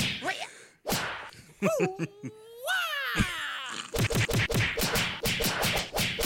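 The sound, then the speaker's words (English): A voice imitates movie fight scene punch sound effects, the sound of people getting beaten up: a rapid string of sharp whooshing smacks and swooping vocal tones, loud, with a brief spoken word early on. “That was the sound of people getting their ass kicked.”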